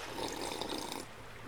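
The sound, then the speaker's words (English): A single slurping sip of a dark and stormy cocktail in Bermuda, a wet, airy, bubbly hiss lasting about a second before fading into quiet, with no voices present. “Let me give you a little audio of my dark and stormy.”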